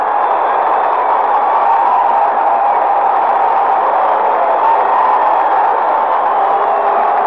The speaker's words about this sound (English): Standing ovation at the new Madison Square Garden. This is a 38 sellout crowd, and they have been reacting to their Knickerbockers the same way all season long.